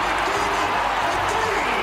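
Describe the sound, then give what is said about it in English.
The Butler crowd at a Big East basketball game, during a one-point game, cheers in a loud, steady roar, a dense wash of many voices that holds without a break for the full two seconds. “This Butler crowd is into it.”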